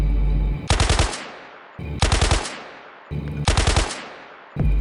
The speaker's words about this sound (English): As the zombies started racing towards us, knocking things off shelves, all of us started shooting from outside the store.